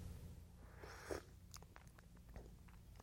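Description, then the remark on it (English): A soft slurp of someone sipping coffee, followed by faint swallowing and small mouth clicks, with no talking. “I really did take a sip of coffee, by the way, guys.”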